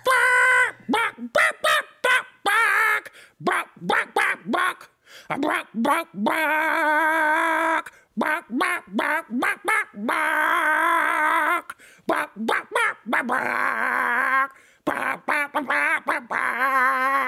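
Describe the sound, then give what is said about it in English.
A person dressed up like a chicken as the mascot Chupa Chup Chicken imitates a chicken clucking out loud, a long run of short, rhythmic voiced bursts broken by a few drawn-out squawking calls, loud, with no other sounds behind it. “I'll be spending the entire night walking around that shed dressed up like a chicken, going...”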